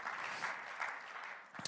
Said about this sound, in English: hopefully you can hear everybody clapping for you.